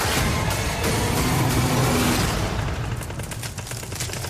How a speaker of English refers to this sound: And it's patently clear that of the three gigantic trucks rumbling to their rescue, not all of them are going to make it over the fast-cracking ice.